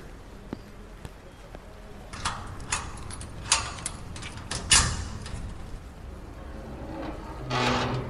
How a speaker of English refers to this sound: What if somebody is inside? What if they see the door opening?